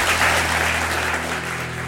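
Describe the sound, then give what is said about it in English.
A crowd applauds, a dense, steady wash of many hands clapping that stays loud throughout and fades slightly toward the end, with a low hum underneath. “Huge round of applause”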